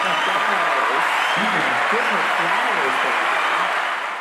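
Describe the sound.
Loud, sustained applause fills the whole stretch as a dense, steady wash of clapping, with voices talking or calling out underneath, before it starts to taper off at the very end.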